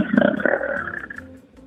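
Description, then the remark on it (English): A loud, rough roar like a truck rumbling past in a city, a growling, gritty drone that holds for about a second before fading away, with no talking. “I'm trying to determine if that is a truck or some sort of inner city swamp monster.”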